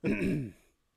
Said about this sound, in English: So, sorry, I'm clearing my throat a lot.